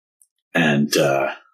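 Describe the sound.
A voice acts out a coughing fit of someone coughing up water: two harsh, throaty bursts in quick succession, fairly loud, the second longer and trailing off.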